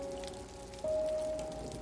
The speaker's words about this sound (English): Can you hear the sound? Can you hear the rain?